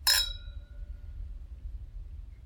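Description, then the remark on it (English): Two glasses of white wine clink together once in a toast, a bright chime whose ringing tone fades over about a second, leaving only a low, quiet background rumble. “All right, cheers.”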